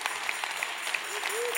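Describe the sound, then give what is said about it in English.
An audience applauding God: dense, steady clapping from many hands forms a continuous crackling wash, with a few faint voices rising briefly underneath. “I just think we should stop and applaud God.”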